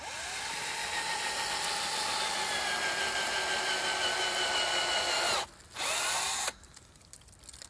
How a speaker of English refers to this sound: While we might get another cold snap or two, I thought I'd check out the trees by drilling one to see. Sure enough, the drill bit came out wet. The sap was flowing. So today, I drilled a few more.